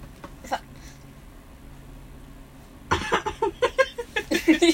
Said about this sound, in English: She coughed into my pillow. Yeah, so it could be muffled. That wasn't muffled at all.